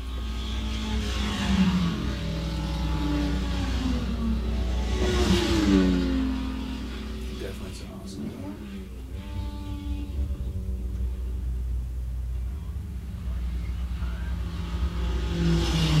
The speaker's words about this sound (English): I hear that race car, I'm like, where could I really use it unless it's trying to obviously be a race car?